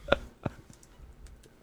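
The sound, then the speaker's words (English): Two sharp clicks from a computer keyboard, followed by a few faint, scattered taps, like someone starting to type. No one is speaking. “I'm gonna hand this keyboard over to you.”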